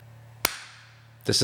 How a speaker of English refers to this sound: This is the internet equivalent of a slow clap, because it's actually a slow clap.